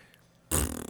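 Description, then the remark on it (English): After a moment of near silence, someone abruptly blows a loud, buzzing fart noise with their mouth, a single raspy burst lasting about half a second. “I was like, don't say it's a fart. That might ruin the vibe. Could you imagine?”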